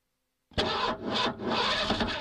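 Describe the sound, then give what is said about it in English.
A car engine cranks loudly, its starter whirring in rhythmic, grinding pulses after a moment of silence, turning over repeatedly without catching as someone tries to start the car. “I'm trying to start the car.”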